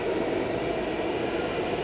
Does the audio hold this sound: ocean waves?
no